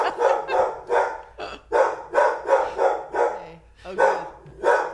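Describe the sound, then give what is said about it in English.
A dog named Darwin barks repeatedly and loudly in a room at a mail carrier, about ten sharp barks in an irregular rapid series, with brief whiny yips between some of them. “Disadvantages to having a dog in the room when we do this podcast.”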